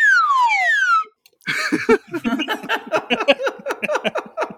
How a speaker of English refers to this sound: What I'll be doing is keeping in you asking for a whistle and I'll be changing the up whistle to a down whistle. Hang on, I'll give you the down.